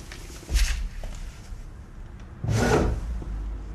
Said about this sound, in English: Let me open the window.